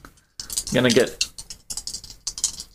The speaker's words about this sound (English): And I'm gonna roll these dice now. Heck yeah.